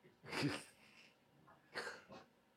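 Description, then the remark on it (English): A dog gives a few short, muffled barks at someone outside next door getting their car: one bark, a pause, then two quick ones close together. No one is speaking. “The dog's going to start going off.”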